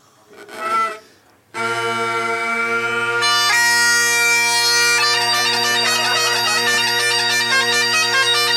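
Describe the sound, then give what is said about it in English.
A brief squawk, then bagpipes played by an expert bagpiper, a pipe major, giving a demonstration strike up a loud, steady drone; a shrill chanter melody joins and plays on, bright and continuous, with no talking. “Please give give a big round of applause for our expert bagpiper”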